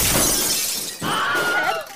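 The glass pane in a door shatters loudly, a bright crashing burst followed by a second wave of tinkling, ringing shards falling and scattering for about two seconds.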